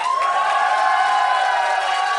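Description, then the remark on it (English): A crowd cheers and applauds loudly and steadily, a dense wash of whoops and clapping that fills the whole moment without any single voice standing out. “By applause, who wants to see that hat on a fucking Weber grill on fire?”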